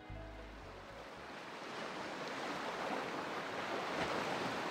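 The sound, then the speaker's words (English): Stormy sea waves surge and crash against the side of a ship at sea in a storm, a dense, rushing roar that swells steadily louder, with a brief low rumble at the very start and no voices. “The sea is churning. Waves crest and crash on the side of the boat.”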